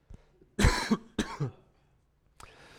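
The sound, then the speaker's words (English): Two harsh coughs in quick succession from a speaker who is ill, the first heavier and longer, followed after a short pause by a faint, breathy rasp near the end. “If I do cough or that, I apologize.”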